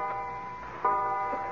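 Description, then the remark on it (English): A clock strikes twelve at midnight, the start of Christmas Day, with a resonant, ringing bell tone; a fresh strike lands partway through while the earlier tone still hums. Moderately loud, with no voices. “What's that clock striking? It's 12 o'clock.”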